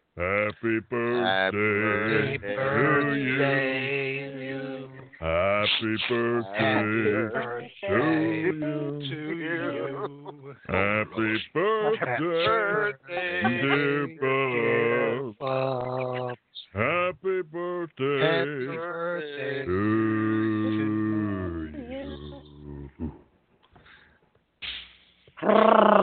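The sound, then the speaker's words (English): A group of IWF wrestlers sings Happy Birthday loudly and raggedly off-key, held notes wavering in pitch, with brief breaths between phrases before it trails off near the end. “Singing happy birthday”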